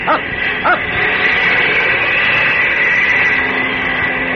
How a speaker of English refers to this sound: Up! Up! It's a plane, all right. I'm sure of it. I can't see it yet, though.